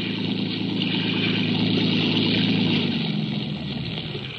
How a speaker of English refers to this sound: Speeding toward us was a motor launch filled with men and with a small boat in tow. Young Phil Jarvis' boat.